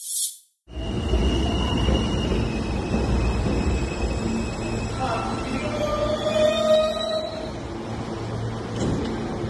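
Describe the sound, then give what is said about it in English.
A subway train rumbles steadily along the rails, loud, with thin metallic squeals rising briefly over the din and muffled voices mixed in underneath. “Not because of that, but because he rode a subway without a mask.”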